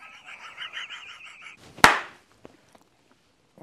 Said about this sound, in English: Good on the clap. That was good.